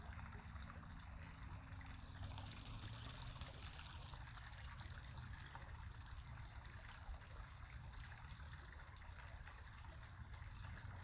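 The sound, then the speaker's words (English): Gentle trickling water runs steadily throughout, a soft, continuous liquid wash with a low rumble underneath and no voices, staying quiet and even from start to finish. “Notice the feeling of floating, hearing the water against your ears.”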